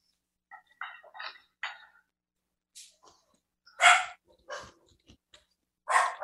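Dogs barking in short, sharp bursts, several barks spread unevenly across a few seconds, fairly close and loud with brief quiet gaps between them.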